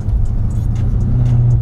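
A heavy truck engine rumbles steadily, a deep low drone with a slight rising rev as it drives along the Pacific Coast Highway (PCH) near 3rd Street Promenade, traffic noise filling the background.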